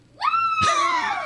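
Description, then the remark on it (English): A woman lets out a single high-pitched, cheerleader-style scream in a studio. It rises sharply, then bursts louder and holds bright and piercing for about a second, alone with no talking. “Who is that your cheerleader screaming at the studio?”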